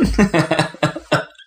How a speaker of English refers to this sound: Deathly silence settles over the room. One person coughs.